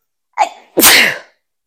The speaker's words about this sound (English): When I start sneezing, I'm getting better.